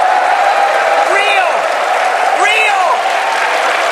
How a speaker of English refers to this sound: Now, I have to tell you, some of those people are your own people and are cheering, Kevin. Well, Jim, we've got some Starbucks partners who proudly wear the green apron. These are veterans and military spouses